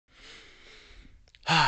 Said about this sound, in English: You can hear me breathing. I'm all out of breath.